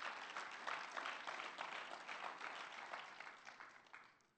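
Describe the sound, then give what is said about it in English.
An audience applauds steadily for a few seconds, a dense wash of many hands clapping at an even, moderate loudness, with no voices breaking through. “So we should give ourselves an applause for that, because it's just very appreciative.”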